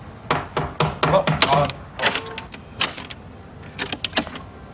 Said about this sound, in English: for goodness sake, didn't you hear me knocking?